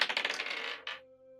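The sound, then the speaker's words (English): Dice rolled for a physical sleight of hand check clatter across a hard surface in a quick run of bright clicks, then one sharper clack as they settle, leaving a faint ringing tone that fades. No one speaks. “Go ahead and roll me a physical sleight of hand check.”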